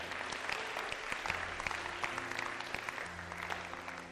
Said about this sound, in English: Give Jesus a mighty clap of praise. Amen.